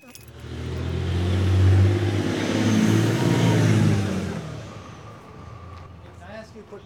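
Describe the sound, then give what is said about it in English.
A car driving downtown: its engine revs and accelerates, the low growl swelling and holding for a few seconds before easing off and fading, with a faint tone lingering at the end. “So curious that I'm going to take a pause here, drive downtown, and ask people on the streets what they'd do.”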